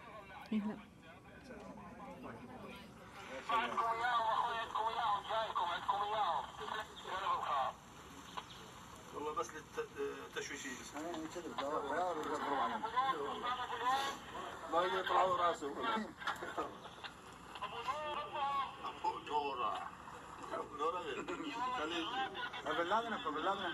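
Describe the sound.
Crackly intercepted two-way radio chatter from ISIS militants: muffled, narrowband voices talking in bursts over a steady hiss of static, continuous for the whole stretch with brief pauses between transmissions.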